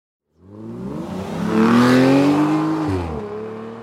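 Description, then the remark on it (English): A car engine turns over and catches, then revs up with a rising, throaty roar before settling back down; the sound is loud, with no one talking. “Let's go, and I will start the car.”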